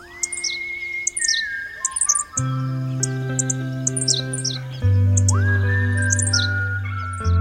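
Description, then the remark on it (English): Henslow's sparrows give short, high, hiccuping chirps again and again, clustered in quick bursts. A steady low droning tone sits underneath throughout, with no voices present. “And the next year, 8, and the next year, 22, and now the place is jumping with henslow sparrow.”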